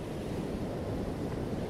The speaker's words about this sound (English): the gentle lapping of the waves, a glass of something with a tiny umbrella in it, and the hum of a quadcopter filming you.